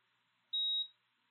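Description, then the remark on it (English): A single short, high-pitched electronic beep from a monitor sounds once, lasting about a third of a second against a faint background hiss, with no voices around it. “And then one of the monitors gave the faintest little beep.”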